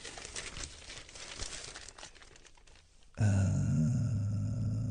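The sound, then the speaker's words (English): Newspaper pages rustle and crinkle for about three seconds as someone leafs through them looking for a headline, then the rustling stops and a steady, loud low drone takes over. “Wrong paper.”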